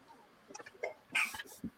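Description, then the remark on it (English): A single sharp sneeze bursts out with a loud, hissy, breathy blast, trailing into a softer airy tail. A few faint murmurs and small mouth noises come just before it. “Good Lord. Bless you.”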